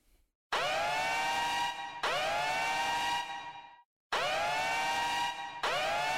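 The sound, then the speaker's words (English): A phone ringtone: a loud, harsh electronic alarm tone blares in repeated bursts of about a second and a half, each rising sharply then holding steady, with brief gaps between them and no voices. “Is that your ringtone? Oh, sorry about that.”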